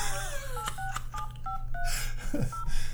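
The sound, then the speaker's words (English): A quick series of touch-tone beeps dials a phone number with the area code 812, each short dual-pitched tone evenly spaced, followed by a brief low swooping sound over a steady background hum. “All right, let's try it with an area code. I say put an area code. Let's do 812, which is right across the river.”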